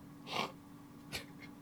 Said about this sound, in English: Keep on talking. I'm just blowing my nose.